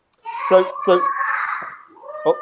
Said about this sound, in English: Yeah, sorry, that's Taylor's son just having a bit of a yell out there.